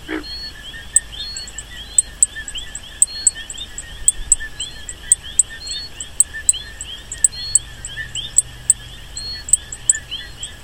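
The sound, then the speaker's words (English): Plains coqui frog calls recorded at night in Sabana Seca, Puerto Rico, on July 7, 2013: high, sharp chirps repeating at a steady, quick rhythm over a constant dense night chorus of trilling insects, with no voices present. “In Sabana Seca, we established the permanent station there because there was a new species of frog, a coqui. It's called the plains coqui.”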